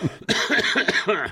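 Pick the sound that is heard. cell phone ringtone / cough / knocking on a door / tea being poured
cough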